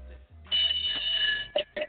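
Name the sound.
bell ringing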